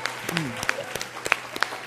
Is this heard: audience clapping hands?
yes